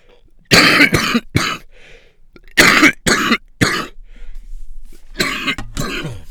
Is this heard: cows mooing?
no